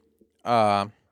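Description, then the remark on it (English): A single sneeze, a loud, strongly voiced burst lasting about half a second, preceded by a faint intake of breath. Nothing else is heard around it. “Bless you.”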